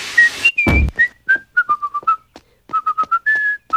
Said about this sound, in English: I've asked you not to whistle that annoying tune.